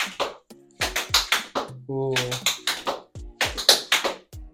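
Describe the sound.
Crisp tap-shoe strikes in quick rhythmic clusters, a rapid flurry of metallic clicks on a hard floor as a tap dancer does a maxi forward step (a hop, a shuffle, a hop and a knock, done fast), with a short vocal "ooh" sounding midway through.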